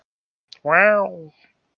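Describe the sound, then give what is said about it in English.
A person imitates a tiger's growl: one short, fairly loud voiced rumble lasting about half a second, preceded by a faint click, with silence around it. “actually giving us a tiger growl.”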